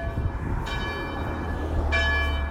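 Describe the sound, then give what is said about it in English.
Bells of a church passed on a walk to a restaurant ring out with two resonant strikes about a second apart, each leaving a shimmering, sustained metallic hum over a low, steady rumble in the background. “And I pass by a church along the way as well, because I hear this sound.”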